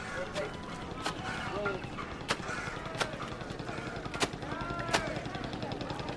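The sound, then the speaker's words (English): Sharp, wet slaps of laundry beaten against a rock by a man in Varanasi, India, in the morning, striking every second or so in an uneven rhythm, with indistinct voices and a busy outdoor murmur behind. “There's a man doing laundry on a rock.”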